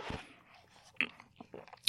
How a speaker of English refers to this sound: I'm going to take a sip of coffee.